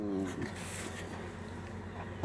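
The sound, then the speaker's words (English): A dog lets out a short, high-pitched whimpering cry at the start, then steady background noise carries on with fainter whines. “Screaming.”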